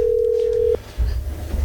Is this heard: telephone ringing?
yes